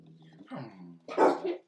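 A fart: a low, buzzy, drawn-out tone that wavers in pitch, followed by a louder, rougher burst near the end. No one speaks over it.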